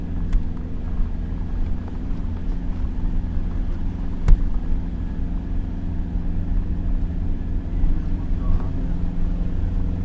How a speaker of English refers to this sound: Cue fast, windy truck ride.